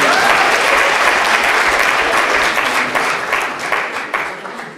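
A room full of people at LSC applauds, dense overlapping claps forming a loud, steady roar that gradually thins and softens toward the end.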